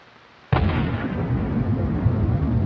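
A massive explosion bursts in suddenly after a brief hush, followed by a loud, deep rumbling roar that sustains heavily without fading, overwhelming.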